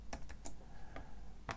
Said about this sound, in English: tapping on a keyboard on a laptop is boring, because it is very boring, very, very much so.